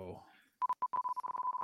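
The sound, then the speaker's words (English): A special Darth Vader prize wheel spinning, heard as a quick run of short, mid-pitched electronic beeps that start a bit spaced out and then tick steadily and rapidly. A voice briefly speaks just before them. “Do we hear the beeping? I can hear it.”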